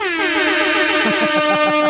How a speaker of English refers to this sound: Yeah! Hip hop air horn awesome. That's right. I can't get enough of that thing. It's so bad.